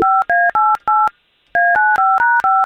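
Touch-tone keypad dialing as morning radio show hosts place a phone call to a listener: a quick run of four dual-pitched beeps, a brief pause, then six more in rapid succession, each tone loud, clean and evenly spaced with no voices.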